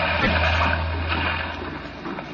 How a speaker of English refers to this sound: I must say the whole trip seems utterly ridiculous to me. Plunging and bobbing about in a little boat in a raging torrent